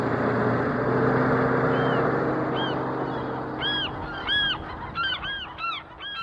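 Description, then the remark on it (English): A flock of birds at a landfill (garbage dump) calls with repeated harsh, honking squawks that grow busier and overlap, over a constant low mechanical rumble like heavy machinery. “For scientists investigating foraging behavior at landfills, the question is, what's a bird like you doing in a dump like this?”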